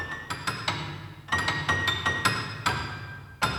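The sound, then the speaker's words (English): The CineSamples prepared piano sample instrument, with FabFilter Pro R reverb: notes struck in a quick, uneven pattern, about a dozen metallic, glassy plinks with bright ringing overtones over a low hum, each trailing into a reverberant wash. No voices. “I'm using the CineSamples prepared piano, which sounds like this.”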